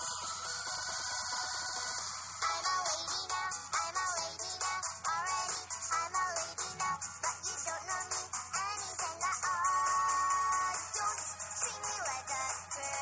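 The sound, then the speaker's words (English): A tinny, hiss-laden video game song plays through a small phone speaker, with a steady rhythmic pulse and wavering melodic lines running continuously for the whole stretch, no one talking over it. “Right, here's the song. This is real, people. This is in a video game.”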